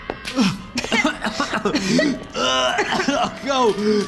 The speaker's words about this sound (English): Bob stumbled into the hallway outside, coughing the last of the putrid burning odor out of his lungs